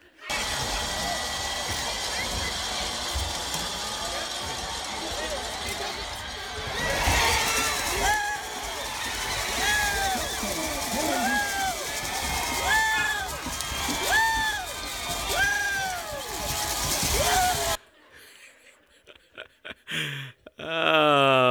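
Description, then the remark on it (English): A loud crowd at a game roars and cheers nonstop, recorded on a phone video, with high shrieks and screams rising above the din in repeated swoops, before the noise cuts off abruptly near the end. “And you can hear me screaming and all that.”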